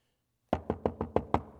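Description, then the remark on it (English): Six quick, evenly spaced knocks on a door after a brief silence, fairly loud, each a sharp woody rap with a short decay. No voices. “And there's a knock.”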